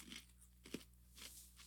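Quiet crunching of a knobby, Cheeto-style puffed corn snack, like a bigger popcorn, being bitten and chewed, with several short crackly bursts spaced unevenly, one sharper crunch standing out. No talking.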